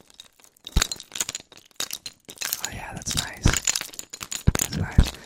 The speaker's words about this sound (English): What else you got? Some keys? I got some keys.